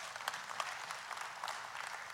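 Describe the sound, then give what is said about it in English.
Steady audience applause, many hands clapping in a dense, crackling wash that holds at an even level for a couple of seconds, with no voices rising above it. “A waiting season, come on, you can clap right there.”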